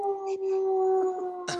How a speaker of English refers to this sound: Sorry, it's my dog. Wow, what a great sound effect. I added that. There was a fire truck that went by, and my dog likes to howl.